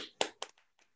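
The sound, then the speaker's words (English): A few scattered hand claps at an online speaker event, about four or five sharp slaps in under a second, the first ones strongest and the later ones fading softer, with no voices. “So a round of applause to everyone.”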